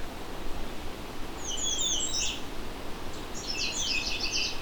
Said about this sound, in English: This is one of the warblers I do not encounter very often. Unlike the American Redstart, which I encounter fairly regularly.